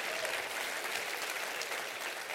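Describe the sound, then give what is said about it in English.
Steady applause from a crowd, many hands clapping in a dense, continuous wash of bright crackling sound that holds level for a couple of seconds without a break. The audience is clapping in response to a call to clap their hands and say amen. “Can you clap your hands and say amen to that?”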